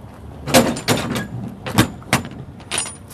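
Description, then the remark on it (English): A series of loud metallic bangs and clatters as a moving company slams shut the back door of a truck it has just finished packing with files, several sharp impacts over a few seconds, with no talking. “The moving company has just finished packing up the truck and slams the back door shut.”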